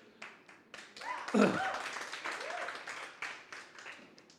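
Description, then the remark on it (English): An audience claps, with irregular overlapping hand claps building for a few seconds. Scattered cheers and voices rise over the applause near the start. “So give him a clap if you want to clap.”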